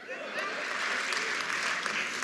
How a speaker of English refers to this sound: I love the applause. It's so fucking good in this room.